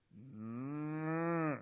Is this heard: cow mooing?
yes